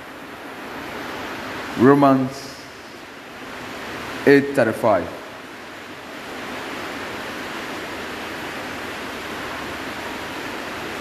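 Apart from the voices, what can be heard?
rain falling outdoors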